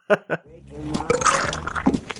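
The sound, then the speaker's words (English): Two quick clinks, then warm beer being poured into a glass in a bar, a gurgling, splashy stream that builds and fills steadily for about two seconds, fairly loud. “But also the sound it makes when he pours it into the glass.”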